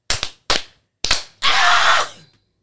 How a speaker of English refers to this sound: We were talking about real stuff over here and y'all over here clapping your asses off.